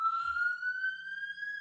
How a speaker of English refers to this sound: That night to the next day, goddamn police sirens.